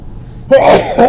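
A single loud human sneeze bursts out after a brief quiet moment, a sharp breathy explosion that trails off with a throaty vocal tail.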